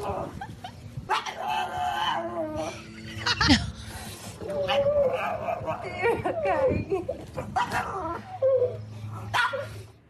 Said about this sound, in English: Is there a dog in there? I didn't hear a dog. It sounded like a gremlin. It is a dog. It might not sound like a dog, but that's a dog. The dog's mad. Like, what are you doing here, woman?